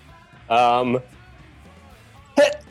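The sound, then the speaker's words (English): A sudden, fairly loud sneeze bursts out, followed about two seconds later by a second, shorter sneeze-like outburst, with quiet in between. “Bless you.”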